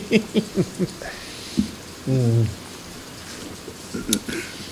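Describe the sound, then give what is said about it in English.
Steady rain, falling after a month of rain, patters in the background as a soft, continuous hiss, while voices of people drinking beer murmur indistinctly over it and a short low hum rises briefly midway. “We're still doing the tranquil sounds of drinking beer and talking shit as you hear the rain in the background.”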